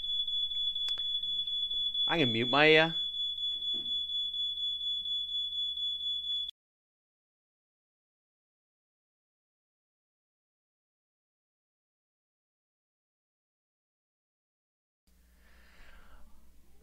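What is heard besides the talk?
smoke alarm beeping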